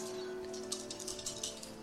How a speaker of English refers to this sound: Somebody roll me a D100 now.